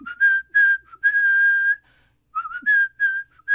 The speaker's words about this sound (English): I'm a great whistler, but I do it a lot absentmindedly. And the next commercial break, I was randomly whistling.